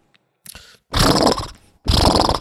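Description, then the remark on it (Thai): A person imitates the sound horses make when they are happy, a short breathy buildup followed by two loud, rough, fluttering blasts of air through the lips, with no talking. “Science Update เขาก็ลงข่าวมันมีพอดแคสต์เล่าข่าวบอกว่า ม้าเนี่ยจะทำเสียงไอ้เนี่ยเวลามีความสุขน่ะ”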